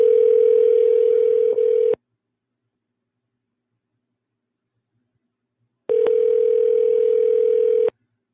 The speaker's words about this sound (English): Are you going to answer the phone?